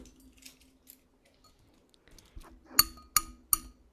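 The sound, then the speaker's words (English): A bell sound effect of three quick, sharp metallic dings in an even rhythm, each thin and clipped short rather than ringing out, after a stretch of faint clicks and rustling. “If you gave me a bell sound, let's get a bell sound here.”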